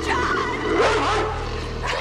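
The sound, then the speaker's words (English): A dog barks and yips in a loud burst of excited, overlapping vocalizations, with some whiny tones mixed in, over a steady low background hum. “come and get your dog!”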